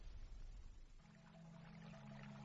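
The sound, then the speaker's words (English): Water from a stream is poured into a silver basin, filling it to the brim. It starts as a splashy rush, then settles into a steady stream with a hollow, ringing tone as the vessel fills. It is fairly quiet. “With water from the stream, Galadriel filled a basin of silver to the brim and breathed on it.”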